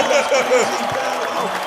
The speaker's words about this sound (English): Let's bring it back old school. Cue the applause for me. Bro. It gets edited in, bro.